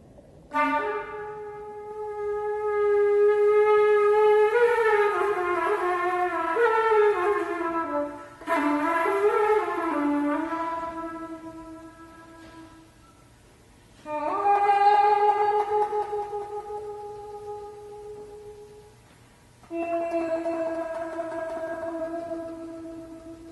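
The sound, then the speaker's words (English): A flute played while humming into it, imitating humpback whale song as George Crumb's score for Vox Balaenae (Voice of the Whale) instructs, gives a buzzy, reedy tone in four long, swooping phrases, with pitches that slide and waver like whale song, alone with no talking. “To recreate the sounds of those humpback whale songs, Crumb's score instructs a flutist to hum into the instrument while blowing specific pitches.”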